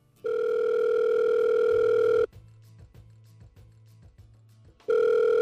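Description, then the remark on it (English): A telephone line sounds a long, steady electronic tone, then a quick run of short, low pulsing beeps before the loud tone returns. No one speaks. “Today, we're pivoting to a new story, a short one, a phone conversation”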